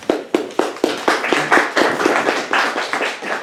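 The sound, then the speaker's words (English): An audience at an event at the Institute of World Politics applauds as a presenter is introduced, with sharp, distinct claps at first that quickly thicken into a steady, moderately loud patter of many hands clapping, sustained for a few seconds with no talking. “We'll see if you're still applauding that.”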